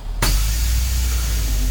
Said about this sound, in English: As the bus pulls away, I want to look back.